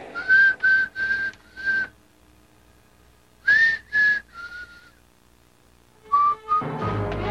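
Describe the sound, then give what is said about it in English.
Someone whistles a slow, eerie tune alone in a horror movie, holding short clear notes in three separate phrases with pauses between them, before a brief rush of noise at the very end. “Creepy whistling! A horror movie staple!”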